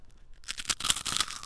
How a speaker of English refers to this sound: Yes, we stopped at Taco Bell and we are super duper excited to can I give them the first crunch? Yes, give them a crunch.